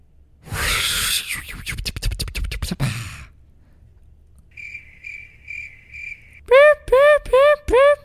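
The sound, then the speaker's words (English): A cricket chirping sound effect: a scratchy, crackling burst, then a steady run of high, thin chirps, ending in several louder warbling, siren-like pulses. No one speaks. “That sounded more like an ambulance than it did crickets.”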